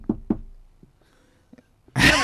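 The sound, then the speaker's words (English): Two firm knocks from the corridor outside on a manager's office door in a staged scene, in quick succession, followed by a few faint taps and a quiet pause before a loud voice abruptly cuts in at the end. “Mr. Nugget in the corridor outside knocks on the door.”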